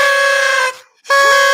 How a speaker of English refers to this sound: Oh, the dog doesn't like the noisemakers.